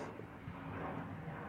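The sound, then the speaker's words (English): A steady, broad rumble of an airplane passing overhead, fairly faint, holding a constant low drone throughout with no voices. “Are you gonna wait for the plane?”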